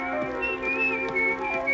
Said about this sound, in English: To keep up his flagging courage, the pedagogue began to whistle.